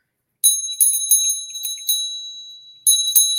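A small hand bell rings in quick repeated shakes, bright metallic tones with overlapping ringing harmonics, pausing briefly before another burst of ringing, fairly loud with no voices.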